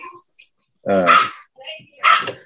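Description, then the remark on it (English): A person's voice imitates a dog barking twice, two loud, rough bark-like bursts about a second apart, with faint sounds between them. “Bark, bark.”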